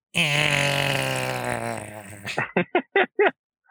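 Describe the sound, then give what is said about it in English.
A voice imitates a silly T-Rex noise: a long, loud, wavering groan that sags in pitch, then breaks into five short, choppy bursts like hiccuping grunts. “What's the worst noise a T-Rex could make?”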